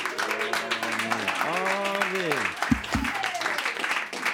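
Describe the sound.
A crowd in Boise claps steadily and loudly for several seconds to welcome a guest, in a dense wash of applause, with voices whooping and cheering over it.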